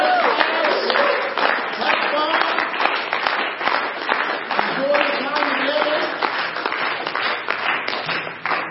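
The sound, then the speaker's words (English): A church crowd claps and cheers steadily for the kids as they go out, with dense, continuous applause and scattered whoops and voices rising through it, loud and sustained throughout. “We just want to cheer as our kids go out.”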